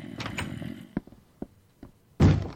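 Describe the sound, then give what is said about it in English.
Heavy thuds against a door, several sharp bangs spaced irregularly, ending in a loud, forceful crash with a rattling mechanical texture, as if someone is trying to force it open. “Busting through one of the doors. Or trying to.”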